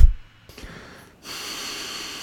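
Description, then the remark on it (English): A sharp, forceful puff of air blown out through the nose as part of a yoga breathing technique, breathy, followed by a steady airy hiss. No one speaks. “Yeah, and it's going to be actually a quick little fast like spurt of breath.”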